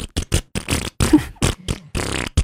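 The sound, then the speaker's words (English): A voice makes a string of short, buzzy mouth-made fart noises as a beat for a Christmas rap, in a quick, uneven rhythm like a beatbox loop, fairly loud with brief gaps between bursts. “It's not easy to make fart noises.”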